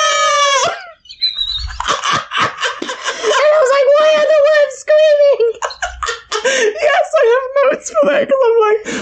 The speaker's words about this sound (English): But my favorite part though is like when that kid's singing. Yes. And then it cuts off and the worms are screaming.